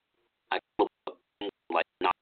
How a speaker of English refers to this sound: Default beep.